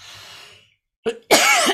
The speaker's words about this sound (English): Oh my goodness, what is going on with my cough?